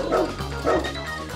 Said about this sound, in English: You know, of course, he sprinkles some dogs barking throughout it. Let's hear a little bit of that intro again, Mr. Greg Campagna.